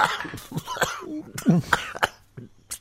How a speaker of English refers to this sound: I hit the microphone with my headphones, and then I start coughing.